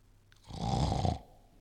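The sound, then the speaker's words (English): A single loud, drawn-out snore made by a person's voice, a rough rattling inhale lasting under a second, with no other talk. “That's called snoring.”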